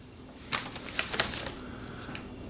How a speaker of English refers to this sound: And that's what 2.5 ounces looks like. Can you see that? So I'm going to open up the bag here. And look at that.